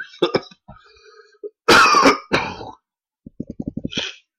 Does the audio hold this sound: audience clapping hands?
no